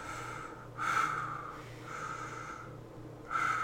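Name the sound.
heavy breathing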